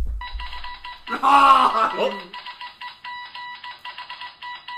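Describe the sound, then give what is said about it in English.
A loud, high bell at a match rings in rapid, uneven bursts like Morse code, nearly nonstop, while a voice briefly shouts over it partway through. “I had a lot of ringing in my ears, and that was a really loud bell.”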